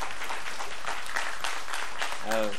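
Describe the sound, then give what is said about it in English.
A church audience claps to thank people who shared that morning, in a steady, dense wash of applause that holds at an even level throughout, with a voice rising briefly over it near the end. “Yeah, if you're one person is going to clap, help them out.”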